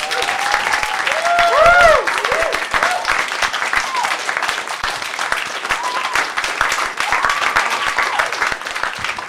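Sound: audience round of applause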